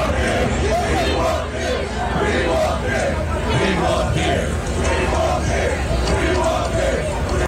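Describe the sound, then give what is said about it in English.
A large, rowdy crowd chants "We want beer" together in unison, loud and continuous, with a dense wall of overlapping voices filling the whole stretch. “They couldn't have been too drunk. They were all chanting it in unison.”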